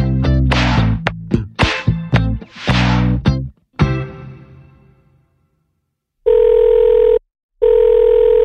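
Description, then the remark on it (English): A telephone rings on an outgoing call made on a Friday morning while the caller picks up coffee: two steady electronic ringback tones separated by a short gap, loud and clear, after a brief burst of clattering sound fades into silence. “it's Friday morning and I'm giving you a quick call while I pick up my coffee”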